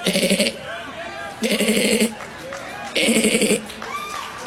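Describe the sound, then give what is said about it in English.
Three loud, nasal goat bleats, each about half a second long and evenly spaced, ring out over a low murmur of crowd chatter in the background. “Pastor Locke and the goat noises.”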